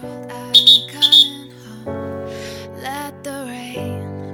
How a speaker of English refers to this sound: May this be the only inadvertent whistle in your day.